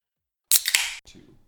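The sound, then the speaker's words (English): A can of Thunder King Brewing Black Gold cold brew coffee cracks open: a sharp metallic snap, a second click, then a bright burst of fizzing hiss lasting about half a second before fading to a faint low rustle. “And to make sure these are epic episodes, we're cracking a brand new cold brew, catching a savage buzz each time.”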